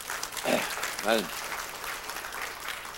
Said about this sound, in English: I feel, let's give her some applause.